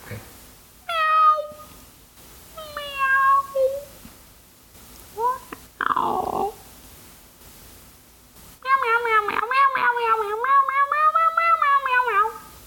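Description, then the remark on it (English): A person's voice imitates a cat, giving a few short, rising meows, a breathy hiss-like burst, then one long, drawn-out wavering meow at the end. “Just meow, that's all you have to do. All I have to do is meow.”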